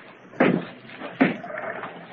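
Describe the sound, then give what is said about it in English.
The side door of an abandoned building next to a hotel being opened: two solid clunks about a second apart, with a faint rattling rustle trailing after the second. “Well, try the door.”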